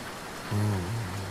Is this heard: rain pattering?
yes